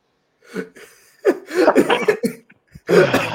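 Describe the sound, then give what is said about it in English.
A few halting, throaty gasps build up before a loud, explosive sneeze bursts out near the end. “I was hoping the sneeze was going to come out while he was doing the ad read.”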